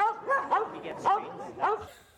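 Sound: dog barking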